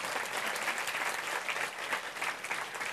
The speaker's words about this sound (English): If you're not standing, you can have your hands clapping together.